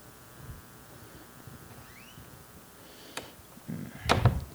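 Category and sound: household object, door being closed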